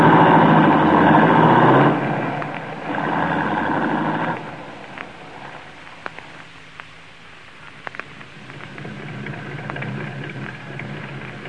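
A light blue sports roadster engine drives by, loud and steady for a few seconds, then drops to a quieter hum with a few sharp clicks and rattles.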